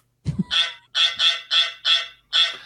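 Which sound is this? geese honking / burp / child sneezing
geese honking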